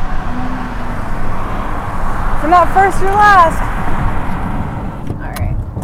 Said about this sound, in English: Well, I'm in the car, obviously, but I'm on the freeway.